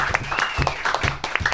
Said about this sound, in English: It's always funny to me to say that when there's nobody here, but when there's people here, it's way weirder because it's like I'm setting myself up for a round of applause.